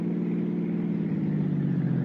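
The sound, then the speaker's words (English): A steady, droning car engine rises slightly in pitch as it accelerates, loud, with a continuous low rumble and no voices, as the car drives out through Westwood and Santa Monica onto the coast highway heading north. “Oh, we cut out through Westwood, then Santa Monica, then hit the coast highway and headed north.”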